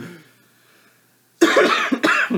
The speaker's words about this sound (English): Stop and cough. Yeah. Because you're sick from your trip.